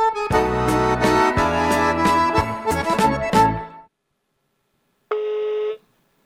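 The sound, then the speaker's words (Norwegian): A loud burst of music cuts off, and after a brief silence a single steady electronic telephone tone sounds for about half a second, like an outgoing call's dialing signal. “Vi ringer”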